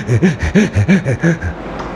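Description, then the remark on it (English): A person attempts a heavy breathing technique, doing rapid, forceful heavy breathing, about eight quick voiced pants in a steady rhythm. The panting trails off after a second and a half. “But heavy breathing, and particularly some techniques of breathing do create hallucinogenic experiences.”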